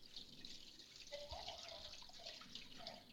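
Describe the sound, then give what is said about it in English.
Dissolved salt brine pours steadily from a bowl over a turkey breast, a continuous splashing, gurgling flow lasting a few seconds, fairly loud with no talking. “Now, I'm just going to pour this over the top of our turkey breast.”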